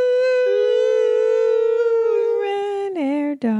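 A dog howls in one long, steady note that holds for about three seconds before dropping into a couple of short, lower, wavering yowls. No barking or talking is heard.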